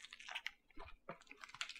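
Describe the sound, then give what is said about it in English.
Crunchy chewing of a rolled taco filled with adobo-seasoned grasshoppers, topped with cilantro and salsa: a quick series of crisp crackling bites with irregular rhythm, fairly quiet and without any talking. “Very crunchy. You know, there's nothing like gross feeling in my mouth or anything.”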